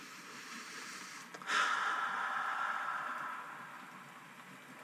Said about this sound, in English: And as we listen to the rain fall and the cars passing by and the kitties sleeping, I just want to say that I am grateful for you.